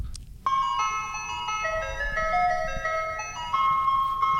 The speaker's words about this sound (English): That's the ice cream truck song.